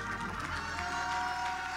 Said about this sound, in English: In Jesus' name, somebody clap your hands and believe God for it right now.